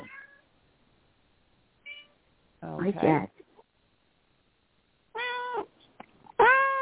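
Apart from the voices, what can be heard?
cat meowing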